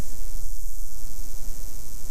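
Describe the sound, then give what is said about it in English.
Steady electrical static interference on recording equipment hisses loudly and continuously across the whole clip, a dense crackling wash of noise with a faint low hum underneath and no voices, heard in headphones while recording inside the lighthouse building at Point Sur. “Could you stop trying to get energy from the equipment? It's affecting their reporting on all of you here at Point Sur.”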